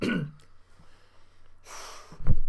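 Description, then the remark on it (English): A person coughs: a short burst at the start, then a harsher breathy cough with a low thump at the end, all without speech. “Excuse me as I cough.”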